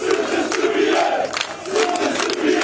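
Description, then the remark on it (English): A large crowd chants loudly in unison at a protest in northern Kosovo as newly elected ethnic Albanian mayors enter the town halls, voices rising and falling in rhythmic, drawn-out cries with no break in the noise. “The mayors were soon met by chanting crowds.”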